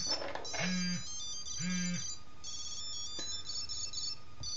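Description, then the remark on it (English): A Tile Bluetooth tracker app on a device plays its locator tune while searching for the tracker: a bright electronic melody of short chiming notes, repeating in a few phrases with brief pauses, moderately loud with no talking. “But the entire time that you're trying to find it, it plays a little tune.”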